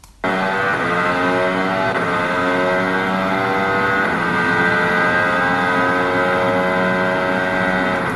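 A racing car's engine roars loud for several seconds, its pitch climbing steadily and dipping briefly at gear changes from 7th up to 8th gear as it accelerates through the fast left-hand turns 13 and 14.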